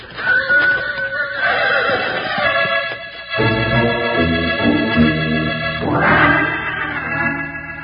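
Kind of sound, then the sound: animal, horse neighing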